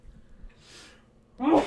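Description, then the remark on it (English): A single sneeze: a short breathy intake, then a loud, abrupt voiced burst at the very end, with no talking around it. “Bless you.”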